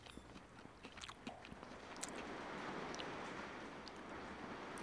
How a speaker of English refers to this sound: It's starting to rain, if you can hear that.